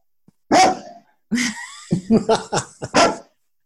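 dog barking

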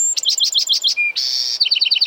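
bewick's wren singing

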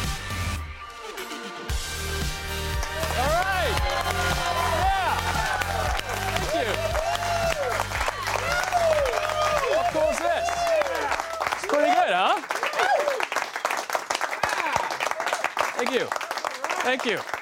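studio audience applause

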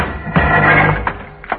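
door being kicked open

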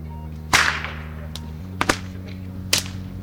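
whip cracking

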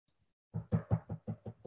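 knocking on a door

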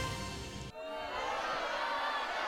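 crowd booing

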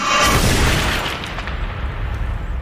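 bomb explosion sound effect

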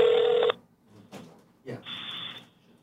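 telephone ringing

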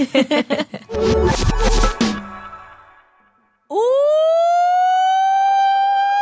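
alarm siren

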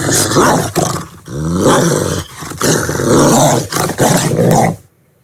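dog growling and snarling

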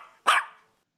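small dog barking

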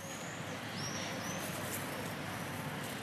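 birds singing

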